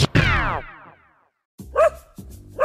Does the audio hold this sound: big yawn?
no